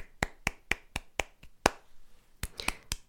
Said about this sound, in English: So give you this favor to acknowledge where you are now, to congratulate where you are now. I applaud.